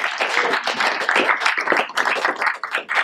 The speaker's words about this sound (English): Can we give out a hand clap this morning? Come on.